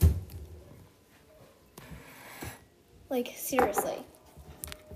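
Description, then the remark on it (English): Wet, sticky squelches from slime being squeezed in the hands, coming in a few irregular bursts, with a short spoken remark partway through. “So if you guys like IRL slime ASMR and stuff, then I can do some.”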